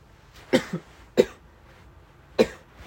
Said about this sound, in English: I can't mute myself, so I just cough. I'm sorry. It's really bad. I'm hot right now, so maybe that's why. This is really bad. I'm sorry if I cough a lot during this.